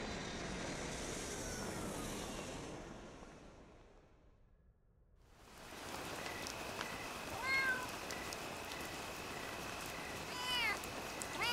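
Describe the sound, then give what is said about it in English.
A cat, out on a late-night walk in the park, meows twice, short rising-and-falling cries heard over a steady, loud roar resembling a passing aircraft, which fades to near silence before the noise returns. “You know, most people take dogs out for late night walks in the park. Not cats.”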